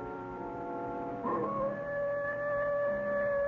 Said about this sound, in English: That wolf again.